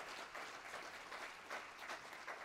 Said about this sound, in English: If we're going to clap together, let's clap as one body, as one body.